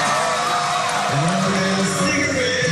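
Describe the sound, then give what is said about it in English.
A large crowd in a sold-out arena roars and cheers loudly and continuously after a singer finishes a song, with scattered whoops and shouts rising out of the dense wash of noise. “To hear the crowd after I was finished singing was just a dream come true, let alone being up on stage with my idol.”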